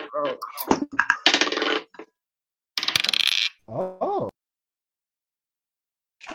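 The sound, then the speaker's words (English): Dice clatter and tumble across a table in a few sharp, rattling bursts as players roll for initiative in a game, followed by a short vocal exclamation, then quiet. “The crowd roars and you roll for initiative.”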